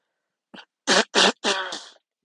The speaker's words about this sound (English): Yeah, I just blow my nose on a podcast.